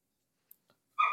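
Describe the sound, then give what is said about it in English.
A single loud dog bark lands at the end, preceded by near silence broken only by a couple of faint small clicks. “The dog.”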